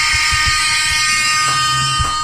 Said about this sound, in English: We gotta give it up for him. We gotta give it. We're gonna give it air horn.